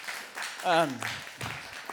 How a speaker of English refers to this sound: Thank y'all. You guys give it a round of applause. Appreciate it.